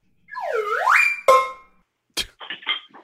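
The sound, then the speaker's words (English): A swooping whistle-like tone dips and rises, then a ringing clang, followed by a ratchet cranked into a bass drum: a heavy thump and a few quick, rasping rattles. No talking. “I very frequently, if I don't have a lot of time or I don't have one hand, I use the ratchet into the bass drum. I go...”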